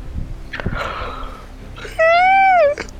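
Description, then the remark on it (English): A breathy inhale, then a loud, high-pitched squeaky yawn that holds a steady whine for under a second before sliding slightly downward at the end. “Squeaky yawn!”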